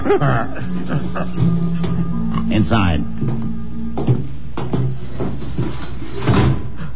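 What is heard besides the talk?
heavy door opening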